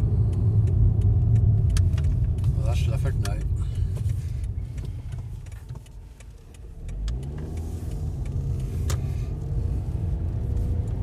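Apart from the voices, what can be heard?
car driving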